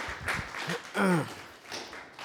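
An audience claps steadily in a dense, noisy patter, with a short voiced whoop or cheer rising out of the applause partway through.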